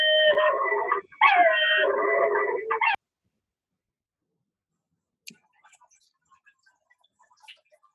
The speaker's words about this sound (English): Somebody had a little yapping dog there, it sounded like.